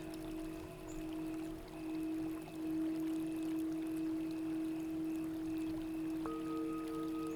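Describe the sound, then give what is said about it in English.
Clean, clear spring water flows gently, trickling and bubbling steadily throughout, soft and continuous, beneath a sustained, humming musical drone. No one speaks. “The water is so soft.”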